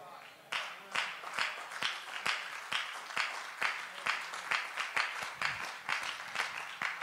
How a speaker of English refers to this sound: Oh, see, for the mere fact I just had a handful of hand clapping, let me know. I need to go on with that for a while.